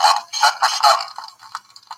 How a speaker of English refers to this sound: Oh, and you can even the fact that you can hear the crackle in it like it's a record player. It's one of my favorite toys.